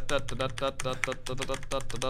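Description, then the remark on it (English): A voice imitates typing on a typewriter with quick, rhythmic mouth clicks and clacks, about four bursts per second, steady, with no actual words spoken. “I'm typing on my typewriter.”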